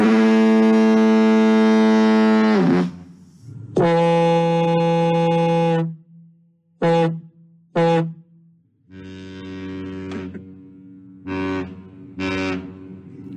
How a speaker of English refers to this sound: Let's move on to diaphone, diaphone, noun from 1906, a fog signal similar to a siren but producing a blast of two tones. A fog signal.